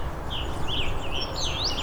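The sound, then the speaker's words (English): A blue-winged warbler sings its high, thin, buzzy bee-buzz song over steady outdoor background noise, with no voices. “You also find blue-wing warblers in these kinds of sections.”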